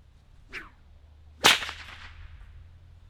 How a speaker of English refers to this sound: it's actually a bit of a backwards motion that causes a whip to crack